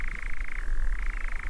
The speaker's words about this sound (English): It's a kind of clicking, weird, eerie insect noise that it makes. Metallic whir or a chirr that just fills the night slowly and totally takes over the entire sort of heavens as you stand in the night. That's the chirr of the nightjar. Eerie.